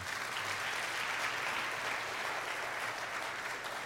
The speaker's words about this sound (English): You didn't have to do anything to get that applause.